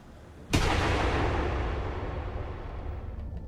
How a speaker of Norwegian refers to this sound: Skuddet treffer Sindre bak på den venstre leggen.